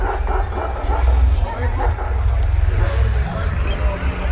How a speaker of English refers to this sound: Recoiling in fright, I saw that the once empty court was now occupied by a multitude of people, but not quite people, animal people with animal heads and animal voices, angry animal voices that barked, brayed and bleated.